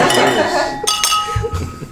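Several glasses clink together in a quick toast, bright ringing tones hanging in the air between sharp taps, fairly loud, with faint murmuring voices underneath.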